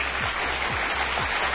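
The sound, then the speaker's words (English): Steady applause for a quiz contestant, a dense wash of many hands clapping at a constant, fairly loud level throughout, with no voices standing out above it. “Okay, that's enough of an applause.”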